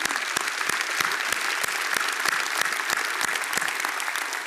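Steady applause from an audience, dense overlapping claps with a few sharper individual hits, sustained at an even loudness for several seconds with no voices over it.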